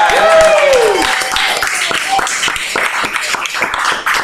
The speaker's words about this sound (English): Oh, let's give a round of applause.